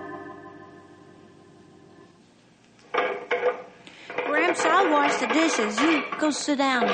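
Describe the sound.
Dishes clink and clatter in a short burst as they are washed, after a low steady hum, then a voice starts talking while faint rattling of plates continues underneath.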